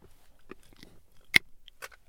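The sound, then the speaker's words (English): Crisp crunching of hard mints being bitten and chewed into powder, a handful of sharp cracks with one loud snap in the middle, otherwise quiet with no talking. “As … crunches them into powder.”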